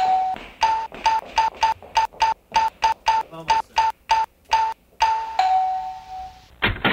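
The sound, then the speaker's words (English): A doorbell rings over and over in rapid, choppy bursts of a steady mid-pitched tone, then holds one longer ring before a sudden burst of noise cuts in at the end. “Are you going to get the door?”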